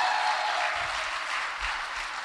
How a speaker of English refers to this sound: Ready? All right, give me a hand of applause.